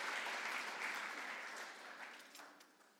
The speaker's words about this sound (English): Can we give them a round of applause, please?